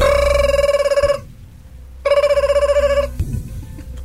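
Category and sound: signal or alarm, telephone bell ringing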